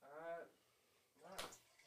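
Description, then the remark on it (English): Liquor is poured into a cup in two short bursts, a trickling, gurgling pour with a brief splashy spike in the second, while a voice is faintly heard. “You like, pour me something in there?”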